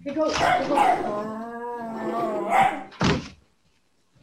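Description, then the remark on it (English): Dogs whine and yip at a door, wanting to be let out to go to the bathroom, in a run of high, wavering cries with one drawn-out whimper, then a single dull thump like a door, followed by silence. “I have to let my dogs out.”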